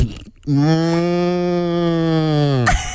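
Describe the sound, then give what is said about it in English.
A person gives a long, loud imitation of a cow's low, guttural moo, one sustained bellow lasting a couple of seconds before breaking off abruptly, with no talking. “We are posting your cow so everyone knows how hard it is to look at you in the face when you're doing these impressions.”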